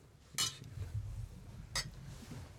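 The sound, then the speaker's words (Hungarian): Two bright glass clinks ring out about a second apart, sharp and high-pitched, over a low murmur of background noise as glasses touch in a toast to the Hungarian national football team's European Championship qualifying campaign and to Marco Rossi. “Hát akkor emelem poharam a magyar labdarúgó válogatott Európa-bajnoki selejtező sorozatára, Márko Rosszira.”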